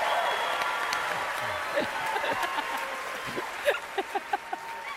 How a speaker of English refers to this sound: Yeah, let me get my applause.